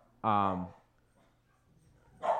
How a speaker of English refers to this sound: I have two dogs, as you can hear. Jesus Christ.